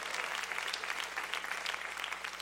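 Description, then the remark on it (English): A crowd applauds steadily, a dense patter of many hands clapping at once that stays fairly even in volume throughout, with no voices standing out. “Come on, no golf claps today.”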